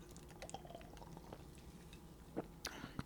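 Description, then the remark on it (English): Someone sips a beverage right into the microphone, with soft wet mouth sounds and a few sharp slurping clicks near the end, all fairly quiet against a low background hum. “I just took a sip of beverage right into the microphone.”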